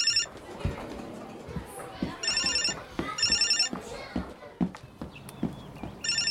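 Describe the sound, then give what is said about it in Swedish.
A mobile phone ringtone chirps in repeated short bursts at a cultural centre in Gothenburg, clearly audible over background clatter and hollow knocking sounds, with some voices murmuring in the room. “Hoppsan, nu ringer det här. Pizza. Ringer min mobil här.”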